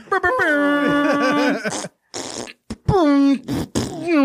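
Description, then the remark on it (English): A voice makes a series of loud fart noises with the mouth, buzzing and wobbling in pitch, several sputtering bursts back to back with short gaps between them. “Fart noises.”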